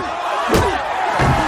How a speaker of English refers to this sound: With the crowd chanting that Gaelic word.